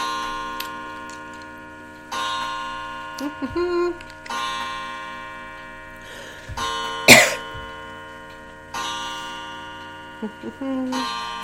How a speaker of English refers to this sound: The clock is agreeing with me a couple times, isn't it? Oh, it's going to click all 11 times. Isn't that special? We'll just let it go.